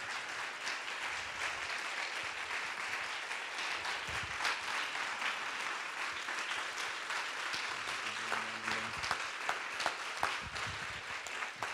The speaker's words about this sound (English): Come on, you can give her one more clap.